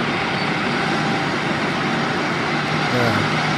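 A John Deere tractor engine runs steadily at a loud, even level, a dense low rumble with a rough mechanical rattle, its pitch shifting slightly near the end.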